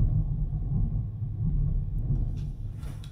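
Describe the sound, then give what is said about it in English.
A deep, sustained rumble of thunder rolls through, shaking the ground, heavy in the low end and steady in loudness for a few seconds, with faint higher crackles near the end. “Thunder! It just shook the ground beneath me.”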